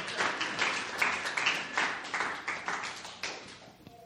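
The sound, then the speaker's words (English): Steady applause from an audience, many hands clapping in a dense, continuous patter with frequent sharp individual claps, holding fairly even in loudness before tapering slightly at the end. “Clap!”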